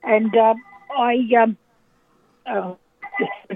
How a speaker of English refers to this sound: Is that the landline? I haven't heard a landline for ages.